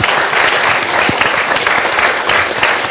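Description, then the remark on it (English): Loud, sustained applause from a crowd, a dense wash of many hands clapping at once with no pauses, steady in volume throughout. “And now a very loud sort of round of applause for the two of them.”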